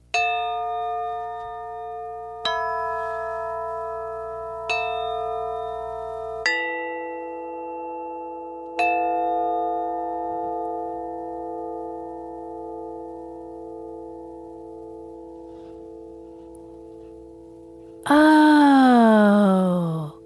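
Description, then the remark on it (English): Bright, resonant chimes are struck about five times at uneven intervals, each tone ringing out and slowly fading with no voices, before a different wavering tone enters at the very end. “Did you hear those beautiful chimes?”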